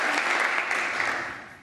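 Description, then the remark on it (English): Sustained applause from a large crowd in a legislative chamber, a dense, steady wash of many hands clapping at once that eases off slightly toward the end, with no voices standing out. “Ted Cruz is not clapping, does not seem pleased.”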